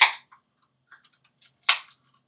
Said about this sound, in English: Cheers to that, huh? I'm going to open up the can.